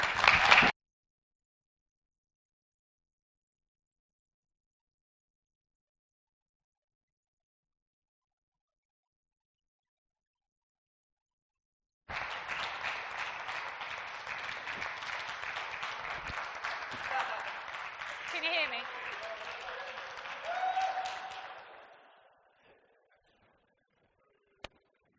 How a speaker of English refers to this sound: Because sometimes we forget to recognize the local giftings. Sometimes we will clap visiting speakers.